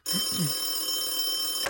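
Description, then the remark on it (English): A telephone ringing tone sounds steadily and continuously at moderate volume as a call is placed to Cal Wilson, with a brief low murmur near the start and no clear speech. “Okay, good, it's ringing.”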